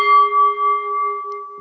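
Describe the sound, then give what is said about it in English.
A bell is struck once to end a debate round, its clear metallic tone ringing out with a slight wavering pulse and slowly fading over about a second and a half. No one speaks. “Okay, I'm going to do the bell, and then we'll have to do like a little closing statement, all right.”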